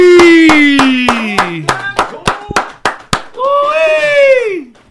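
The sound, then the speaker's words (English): Steady, rhythmic hand claps welcoming the last guest of 2021 onto a show, about a dozen in quick succession, over a long falling vocal whoop, followed by a second loud, wavering cheer as the clapping stops. “So without further ado, for the last guest of 2021, I want us to all give a big round of applause for my boy,”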